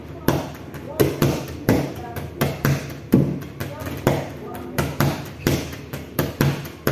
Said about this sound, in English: so I'm going to be doing this song with my voice, and I'm going to be playing beats. Yeah, with this chair that is right here.